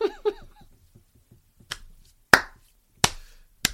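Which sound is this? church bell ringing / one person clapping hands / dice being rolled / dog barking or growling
one person clapping hands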